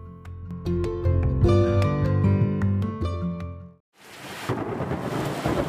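A short musical passage breaks off into an afternoon thunderstorm in Pinellas County, Florida: steady, loud rain hiss with a deep rumble of thunder underneath, continuous for the last couple of seconds.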